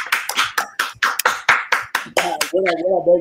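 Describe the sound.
About a dozen sharp, crisp hand claps in a quick, slightly uneven rhythm, loud and clear, before a voice starts speaking over the last of them.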